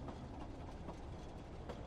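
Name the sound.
subway train passing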